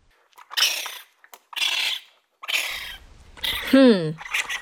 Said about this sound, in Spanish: No sé qué es. ¡Qué raro es ese sonido! ¿Qué animal suena así? ¿Tu adulto sabe qué animal es? ¡Oh! ¡Es un mapache bebé!